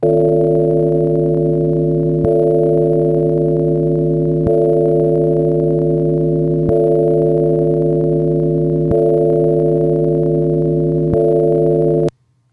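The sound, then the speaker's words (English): A reconstruction of the Liberty Bell's original sound from before it cracked tolls alone, struck roughly every two seconds, its loud, steady humming overtones ringing on between strikes until the sound cuts off abruptly. “So this is what they believe it sounded like before it cracked.”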